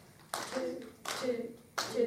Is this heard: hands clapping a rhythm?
yes